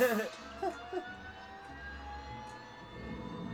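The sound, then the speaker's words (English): A jet plane engine in a film scene with Clint Eastwood roars steadily, a broad rushing noise layered with a thin, high whine and a low rumble underneath, holding at an even level throughout. “Yeah, this is like a supersonic jet.”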